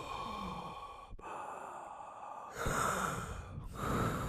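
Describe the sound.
Exaggerated heavy breathing, a series of loud, drawn-out breaths with rasping inhales and exhales, rising louder in the last half, no speech.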